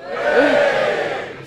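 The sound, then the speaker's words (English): A crowd erupts in a loud burst of cheering and whooping, voting by cheer that Jeremy Corbyn said "stupid woman"; sustained voices blend into a broad roar with a few higher shouts rising above it, holding steady for about a second and a half. “Give me a cheer if you think you said stupid woman.”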